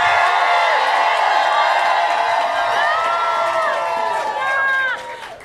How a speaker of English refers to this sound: You've been such a great crowd. Everybody yell, woo!